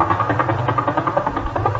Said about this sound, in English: A pulsar.